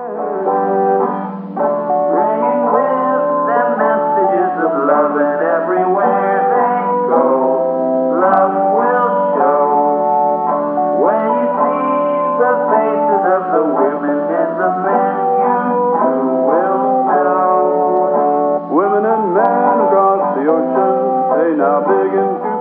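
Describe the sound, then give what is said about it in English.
A bright, upbeat song plays at a steady, full volume, with a male lead vocal and a keyboard line tracing the same melody beneath him throughout. “I notice like the keyboard melody is doing the vocal melody under him.”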